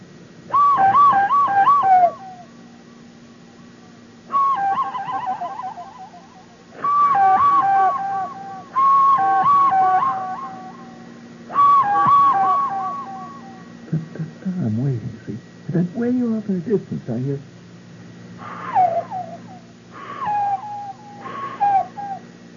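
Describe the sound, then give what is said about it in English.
A person blows hooting, wavering whistles through cupped hands, imitating a bird of prey's cry in a series of loud bursts separated by short pauses, with some lower warbling tones midway. “It's an answering cry of a fellow bird of prey walking down the alley someplace.”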